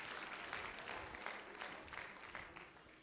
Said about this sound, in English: Oh, give Him one more great big hand clap of praise and you may be seated.